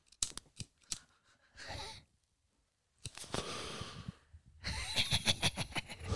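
Parliament 100s cigarettes being passed and handled: a few sharp taps and clicks, then bursts of crinkly, papery rustling separated by a brief silence, ending in a longer stretch of crackling handling noise. No voices.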